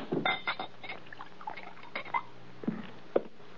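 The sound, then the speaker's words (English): A drink is poured into a glass inside a wagon used as a home, a soft trickling broken by a few light clinks and taps of glassware, with no one speaking. “Pour this down.”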